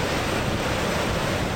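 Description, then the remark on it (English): A steady, loud roar of rushing water at Niagara Falls, where about 750,000 gallons of water a second cascade over, fills the whole span, dense and unbroken, with no voices. “Niagara Falls, the name comes from the Iroquois Indian word meaning thunder of waters. And thunder it does.”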